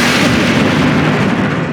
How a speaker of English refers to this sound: If I'm being completely honest, you came in a little too early with the lightning.